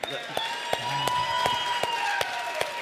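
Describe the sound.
A crowd claps in unison to a steady beat, roughly three sharp claps per second, over a continuous bed of crowd noise and cheering voices.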